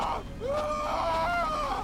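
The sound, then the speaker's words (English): A man lets out a long, strained scream that rises sharply and then holds a loud, wavering pitch for over a second, with no words spoken. “… screams behind me.”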